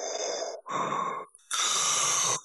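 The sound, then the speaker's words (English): Loud breathing directly into a microphone: two short breaths followed by a longer, heavier one, each a harsh rush of air with brief pauses between and no talking. “Somebody needs to move their mouth away from their mic or vice versa. Testing. Or maybe try breathing through their nose sometime, maybe.”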